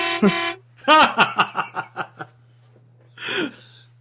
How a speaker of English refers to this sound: I heard one a while ago, I swear. I asked him, and he's like, yeah, I heard one too. I thought I heard a truck horn.